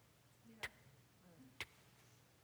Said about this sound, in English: And all I could hear was the grandfather clock ticking.